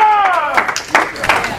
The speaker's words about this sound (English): Give God a hand clap of praise up in here. Up in here, up in here.